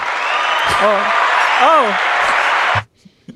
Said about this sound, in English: I've got an applause button, actually. Let me...